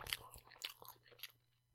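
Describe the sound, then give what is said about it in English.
Someone bites into a bread roll and chews it, a handful of soft, crisp crunches in an irregular rhythm, fairly quiet, with no talking. “Let's just say I kind of wish this was that Dutch Crunch roll.”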